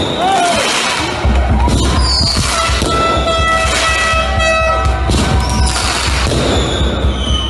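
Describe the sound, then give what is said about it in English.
Loud commercial-grade fireworks set off at night by a crowd in front of Ted Wheeler's apartment, going off in a dense barrage: rapid crackling bursts and booms overlap with shrill whistling tones, continuing without pause for several seconds. “in Ted Wheeler's apartment, outside of his apartment, where the rage mob, the terrorists, are out in front of his house setting off commercial grade fireworks as people in the apartment complex are trying to sleep.”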